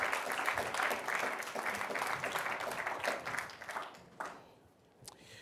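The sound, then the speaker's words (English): Steady audience applause at a GESF panel as a panelist is introduced, a dense crackle of many hands clapping at once, holding strong for about four seconds before thinning out into a few scattered claps. “A round of applause for her, please.”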